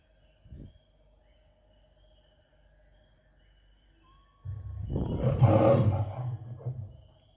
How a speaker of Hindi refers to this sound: कुएं के नज़दीक आकर शेर को अंदर झांकने के लिए कहा। शेर ने कुएं के अंदर झांका तो कुएं के पानी में उसे परछाई दिखाई दी। परछाई को देखकर शेर ज़ोर से दहाड़ा।